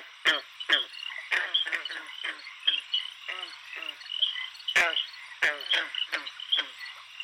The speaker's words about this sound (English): A word about the frogs with whom we share so-called Newfoundland. We're more likely to hear the American toad, which was introduced in the 1960s.